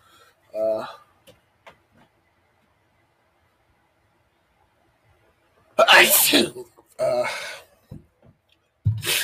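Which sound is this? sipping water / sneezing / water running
sneezing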